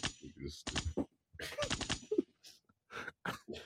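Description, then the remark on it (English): A voice imitates gunfire, a 'liquor gunshot', with a rapid string of loud, explosive mouth bursts, some clustered together and others spaced apart, with short gasping breaths between them. “That's a liquor gunshot for Big Papa Heaven.”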